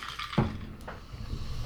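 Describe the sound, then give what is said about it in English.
Apricot liqueur pours steadily into glasses with a soft, gurgling trickle, broken by a brief bump and a faint, light glassy tick partway through. No one speaks. “There we go. A little bit of marinette apricot liqueur.”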